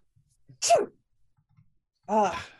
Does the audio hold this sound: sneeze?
yes